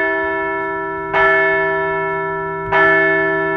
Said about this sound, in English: So let's ring the bell for a bounce-back weekend.